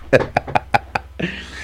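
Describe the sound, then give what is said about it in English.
About five quick, hollow knocks on plastic in an uneven rhythm, each a sharp, fairly loud rap with a slight tonal ring, followed by a soft rustle or murmur. “Knock on the plastic.”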